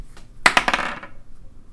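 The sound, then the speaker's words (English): Dice are rolled for an attack roll and rattle across a hard tabletop: a quick burst of sharp, clattering clicks lasting about half a second before settling into quiet, with no voices. “What, you mean you don't have dice with you wherever you go? Actually, I do within arm's reach.”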